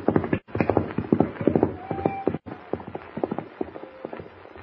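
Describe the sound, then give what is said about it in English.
A wild, unbroken horse gallops hard into the darkness with a rider bound to the saddle, its hooves pounding in a fast, uneven drumming that stays loud, broken by a couple of brief pauses, with a faint whinny-like cry threaded through. “Bound to the saddle, Jimmy cries out in terror as the wild, unbroken horse gallops into the darkness.”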